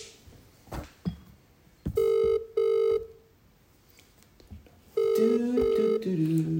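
A phone rings with two short, loud electronic tone bursts, then a longer ringtone with stepping pitches, preceded by a few faint clicks and taps. No one speaks.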